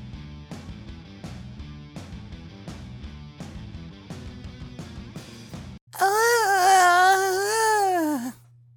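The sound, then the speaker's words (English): A short stretch of rhythmic music gives way to a loud, drawn-out vocal yawn lasting about two seconds, its pitch rising and then sagging, with no talk around it. “I was yawning. Oh, that's your yawn.”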